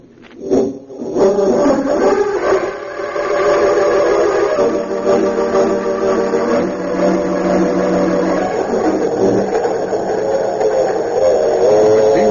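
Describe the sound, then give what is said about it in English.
An express train races along the rails through the night in a loud, steady roar, with droning whistle-like tones layered over the rumble. It starts abruptly and carries on without a break, with no voices. “Express the Golden Comet speeding through the night toward the city of Metropolis.”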